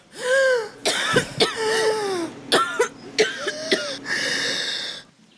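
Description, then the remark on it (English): Labored breathing with a high, whistling wheeze on each breath during an asthma attack at night, broken by several sharp, harsh coughs and throat-clearing bursts over a few seconds. No talking. “I was just having an asthma attack.”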